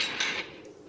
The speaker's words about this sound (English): It's a jail. It's the only one that has a prisoner in it. Okay, you hear, she literally just takes to it, goes click, click, click, click, click, click, click, click, click, click, and then the door just opens by itself.